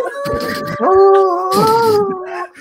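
A dog howls in long, wavering tones that rise and sag in pitch, loud, with rough noisy bursts underneath at the start and middle.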